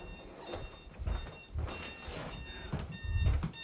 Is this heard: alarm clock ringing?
yes